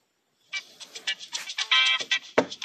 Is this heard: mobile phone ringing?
yes